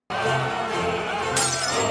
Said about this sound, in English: Well, I mean, if you can't tell, Lando smashed my favorite camera lens.